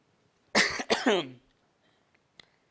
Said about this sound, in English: Excuse me, I'm sorry. I need to get a little choked up. I'm just coughing in my throat, really.